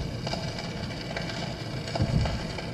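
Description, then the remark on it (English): Steady vinyl surface crackle from the dust on a record playing on a record player, with scattered sharp pops and ticks over a low, muffled rumble, a dry irregular sputter that sounds a little like light rain or a small fire. “The dust and the pop on that record player.”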